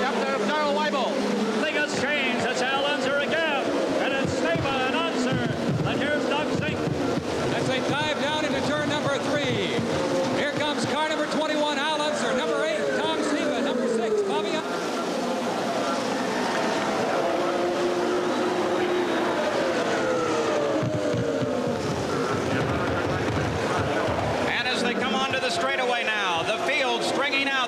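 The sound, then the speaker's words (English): Race cars on the first lap at the Brickyard, led by Al Unser, roar loudly and continuously, their pitch rising and falling in sweeping whines as they pass, with a dense wash of crowd and voices underneath. “We see the cars coming, and here it is.”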